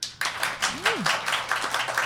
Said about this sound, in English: I want to quick put it to the audience. Please clap if you think Finger Man and the Prince banged.